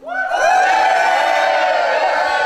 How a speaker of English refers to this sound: Shall we bring him on down and give him a chance to tell us more himself? Give him a big cheer.